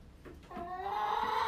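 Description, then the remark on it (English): Hens cluck softly as something is hung up in the air for them, with a couple of short notes followed by a longer, drawn-out, rising call with a nasal, harmonic tone. No one speaks. “That sounds like happy chickens to me.”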